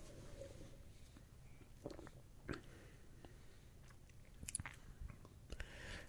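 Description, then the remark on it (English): Quiet sips of a fizzy drink: a few soft slurps and small wet mouth clicks over a faint crackling hiss, with no talking. “I'm going to take three sips before I can figure out what's going on here.”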